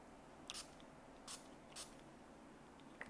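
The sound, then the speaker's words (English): Three short, hissing spritzes of an organic herbal throat spray pump from Thailand, spaced unevenly over a few seconds, with quiet room tone between them and no talking. “I'm going to do this throat spray.”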